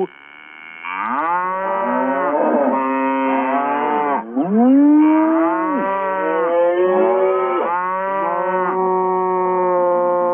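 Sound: cow mooing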